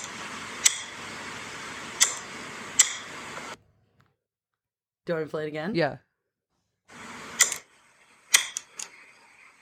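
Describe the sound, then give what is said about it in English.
A light switch flicked on and off, giving several sharp clicks at uneven intervals over a soft background hiss, with a brief spoken exchange in the middle. “Like turning on and off a light switch.”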